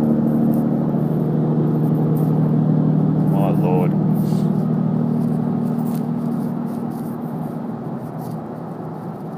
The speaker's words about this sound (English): You can probably hear him on there, so. Pretty beefy engine.